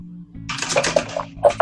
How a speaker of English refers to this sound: I'll fill up any water skins that you have, too, if you wish. I do need that. Oh, yes, please. So she do that.